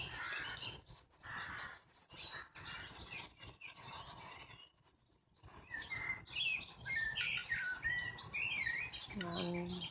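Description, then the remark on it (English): Birds sing and chirp continuously outdoors on a windy day, a busy overlapping chorus of high, bright trills and tweets with a brief lull midway, over a steady low rustle of background noise. “And the birds, their song is the strongest sound at the minute.”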